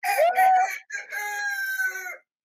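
A rooster crows loudly, a harsh rising call followed by a long, strained, wavering cock-a-doodle-doo that trails off, with no voices alongside.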